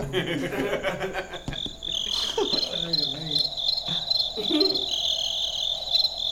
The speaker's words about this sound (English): Hang on, the crickets are back.